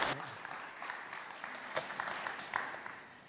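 An audience applauds steadily as a speaker comes up to speak, a dense wash of many hands clapping at once, moderately loud, with a few sharper individual claps standing out.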